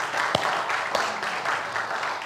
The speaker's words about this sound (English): I wanted to first congratulate the Bulldogs, the Rolla High School Bulldog basketball team. They went 24-4, which is phenomenal. Would you give them a round of applause?